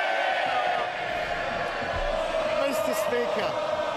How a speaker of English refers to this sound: Mr. Speaker, does he really expect us to believe that the member for Chipping Barton and the member for the Isle of Wight are cheering him on because he's going to build more homes? Pull the other one.